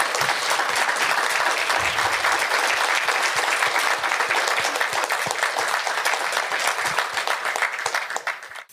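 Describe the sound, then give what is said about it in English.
Sustained applause from a sizable audience in a room in Scotts Valley for nonviolence activists, dense overlapping claps at a steady, loud level for several seconds before gradually thinning out at the end. “How about a big round of applause for them?”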